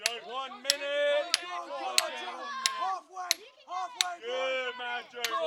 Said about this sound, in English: swinging a small sledgehammer over and over again into a spike stuck into a concrete block. He's sweating profusely on this cool morning at the Missouri S&T Experimental Mine in Rolla.